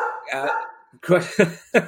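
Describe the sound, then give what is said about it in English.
A dog barks at the postman, a yelping whine first followed by three sharp, loud barks in quick succession. “hello, what's upset the dog? Oh, it's postman.”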